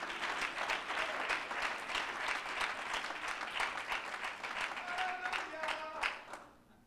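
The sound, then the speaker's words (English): An audience at a church service claps steadily for several seconds in praise to the Lord, a dense, sustained patter of many hands with a few faint vocal tones near the end before the applause fades out. “And as you're seated tonight, would you give the Lord another rounding hand clap of praise?”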